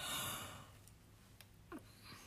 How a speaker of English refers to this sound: How many is that? What? How many yawns? 6.